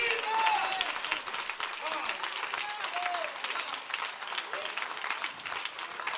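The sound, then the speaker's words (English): A crowd claps steadily in a dense, continuous patter of applause lasting several seconds, with faint cheering voices rising above it and no clear speech. “Somebody clap your hands and engage him right now.”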